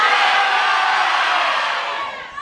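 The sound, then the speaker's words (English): An audience shouts their first names all at once on a count of three, a loud, dense roar of overlapping voices, holding steady for about two seconds before tapering off slightly at the end. “I feel like a lot of people just screamed.”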